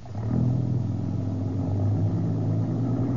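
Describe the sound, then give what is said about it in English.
A heavy truck engine rumbles loudly and steadily, its deep droning hum holding throughout as the truck moves on, with no voices. “the general seems to be giving that guy Watson orders. Yeah, and now the truck's moving on.”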